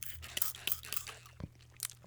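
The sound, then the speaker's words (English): Crunchy chewing and biting of Maggi, a run of moist, crackly bites with sharp high clicks at an irregular rhythm, fairly quiet, with a low steady hum underneath and no talking. “So I get to save myself from a double tap there, but I'm going to take a little bit of this Maggi.”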